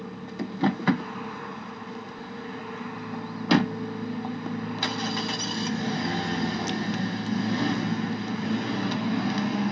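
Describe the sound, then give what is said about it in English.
A couple of sharp clicks and a solid thunk, then a car engine turns over and settles into a steady rumbling idle that carries on to the end. No one speaks. “How's she getting the passenger side door and start the car up?”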